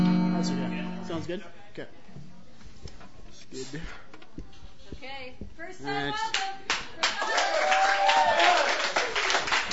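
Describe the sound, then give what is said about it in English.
An audience at a live music event applauds as a guitarist is introduced, with uneven, scattered claps while people talk over it; the clapping grows louder and denser in the last few seconds. “Well, I might want to hold the old applause to you actually here.”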